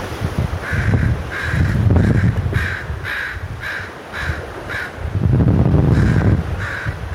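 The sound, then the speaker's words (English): A crow caws over and over in a steady, rhythmic series of harsh calls, with gusty wind rumbling underneath and no one talking. “Hello, crow.”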